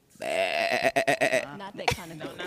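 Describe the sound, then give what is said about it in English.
A goat bleats loudly, a long wavering cry that breaks into quick stuttering pulses, followed by a second shorter, shakier bleat. “Not that kind of goat.”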